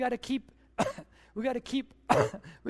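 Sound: cough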